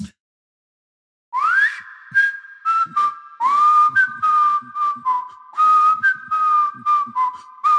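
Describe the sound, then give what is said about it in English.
A person whistles the short ending melody of a song, starting with a rising slide and moving through sustained and wavering notes for several seconds, with no talking. “I think I could whistle that ending”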